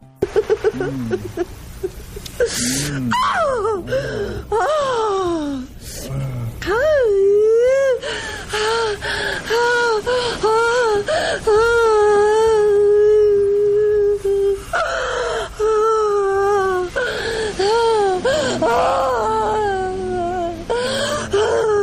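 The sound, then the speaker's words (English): A woman moans, screams in pleasure and cries in long, loud, wavering wails that swoop up and down in pitch, broken by short gasping sobs, with no words. “She's moaning, screaming in pleasure, crying, and also laughing.”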